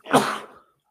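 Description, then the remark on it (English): A single sharp sneeze bursts out, loud and breathy, fading within half a second into silence. “Bless you.”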